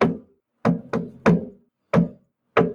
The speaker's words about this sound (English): It was 1, 2, 3, 1, 2, 1, 2, 3, 1, 2, 3, 1, 2. Something like that. I had listened hard for a second about... Does someone want to give it a go then? Knock it out on the desk?